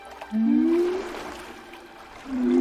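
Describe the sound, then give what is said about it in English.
Two long, rising calls of a whale-like sea creature called a tulkun, a low moan sweeping upward, then a second call starting near the end, set against a soft watery wash with no voices. “I think the most engaging character, the character I cared the most about, is this like whale sea creature that one of the characters bonds with towards the end.”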